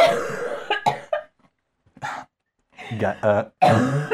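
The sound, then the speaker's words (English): A person drinking root beer in a hotel room coughs in a series of harsh, uneven bursts, with short pauses between them and some throaty, strained vocal sounds mixed in. “I'm going to burp. I'm going to cough.”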